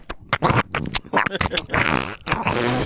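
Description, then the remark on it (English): Loud scraping, snuffling and muffled thumps as Gunner, a dog, mouths and chews right on the microphone, trying to eat it, in irregular bursts with brief pauses between. “Yeah, Gunner's got the microphone right now. He's trying to eat it.”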